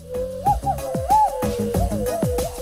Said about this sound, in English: I've never heard that noise in my life before. That was wild. What a crazy skill that I've never known about you. Oh, dude, come on. Everyone knows how to whistle out of their hands like that. That's what you're doing is nuts.